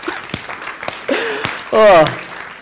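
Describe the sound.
A church audience gives a round of applause: scattered clapping, a few sharp claps standing out, joined by loud voiced cheers and a rising whoop partway through.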